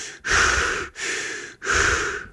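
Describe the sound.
A voice imitates the heavy, hissing breaths of an astronaut in a spacesuit, three long drawn-out inhales and exhales in slow rhythm, loud with brief gaps between them, like breathing inside a sealed helmet.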